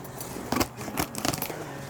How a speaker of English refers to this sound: Okay. A few slashes with scissors.